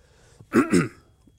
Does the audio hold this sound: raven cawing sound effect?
no